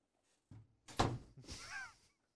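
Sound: door being kicked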